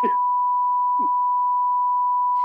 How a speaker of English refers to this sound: I'm gonna put a big beep over what I just said